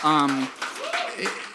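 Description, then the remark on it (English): Audience applause for everyone attending an evening stage event, mixed with crowd noise, opening with a loud sustained cheer or shout, then continuing as a rough, steady wash of clapping and voices for a second or so. “A big round of applause to everybody that's been here tonight.”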